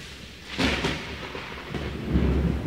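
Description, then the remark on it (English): Heavy rain hisses steadily while a rumble of thunder rolls in, swelling briefly and fading, with a deep low rumble building again toward the end. No voices. “It was a dark and rainy Shabbos afternoon.”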